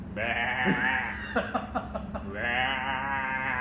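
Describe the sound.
A person imitates a goat, holding one long, wavering, nasal bleat with a quick stuttering tremble in the middle. It is fairly loud, with no talking over it.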